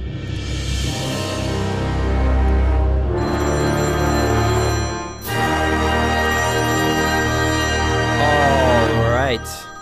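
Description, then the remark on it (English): A loud, electronic ringtone-like tone plays steadily for several seconds, full of buzzy harmonics, with a brief break midway and a warbling upward pitch sweep near the end. “Maybe include like a phone ringing or something.”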